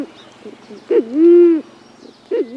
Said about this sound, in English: But even though this bird sounds like an owl, it's not. It's actually a band-tailed pigeon, a case of mistaken identity.